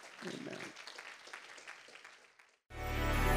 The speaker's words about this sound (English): And in Jesus' name, we say amen and we clap our hands unto the Lord.